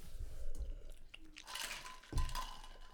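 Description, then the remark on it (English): Sipping of a drink, with a couple of short slurping pulls and soft wet mouth noises and swallowing in between, fairly quiet, with no one talking. “Wait, sip. Hurt. Sip.”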